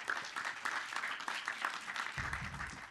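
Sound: audience applause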